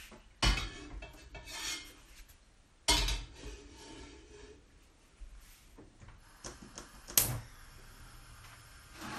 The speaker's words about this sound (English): Okay, yeah, I'll pop some water in a saucepan and get the water on the boil.